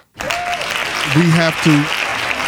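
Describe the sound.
A steady burst of applause, many hands clapping in a dense, continuous patter, with a few short voiced whoops and cheers rising over it midway.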